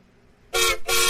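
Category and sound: vehicle, passing train horn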